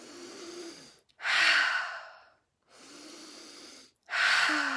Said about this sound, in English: As we breathe in light and we breathe out love for the last time, breathing in through your nose and out through your mouth, breathing in.